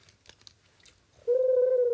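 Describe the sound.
A person imitates a pigeon's coo with one loud, sustained, steady hooting tone, after a moment of faint tapping and clicking.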